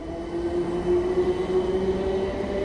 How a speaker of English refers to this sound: Well, I've got off one train at Richmond. Now I'm about to get onto another train.